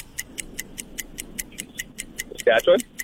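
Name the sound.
ticking game clock countdown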